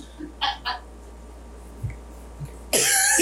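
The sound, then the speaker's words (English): Two short, sharp coughs in quick succession, followed after a pause by a louder, harsher burst of breathy throat noise at the end. No one speaks. “That got me coughing.”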